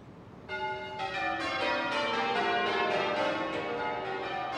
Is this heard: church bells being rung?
yes